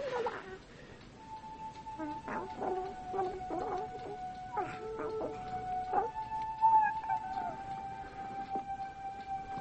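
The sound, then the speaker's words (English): A new pet dog named Barney, bought at a little junk store in Chinatown, whimpers with a long, steady high whine, broken by a series of short, sharp yips and barks that come in quick bursts, moderately loud. “Come on, Barney, be a good dog.”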